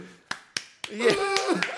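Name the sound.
slow hand clap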